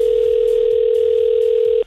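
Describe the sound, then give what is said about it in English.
A steady, loud telephone dial tone hums continuously for nearly two seconds, then cuts off abruptly, with faint rhythmic clicks underneath like a number being dialed, as a call is placed to a contestant to enter them in a prize draw. “But first things first, we got to call you and put you in the draw. Let's do it right now.”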